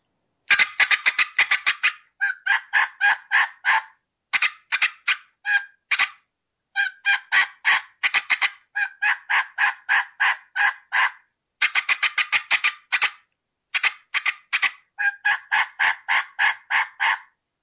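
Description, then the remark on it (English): Wild turkeys gobble in loud, rapid rattling bursts during a turkey hunt as a hunter calls to them, one volley after another with brief pauses between, the throaty notes tumbling quickly together. No one speaks. “So they just boom, and then you just go right back into and gobbling and it.”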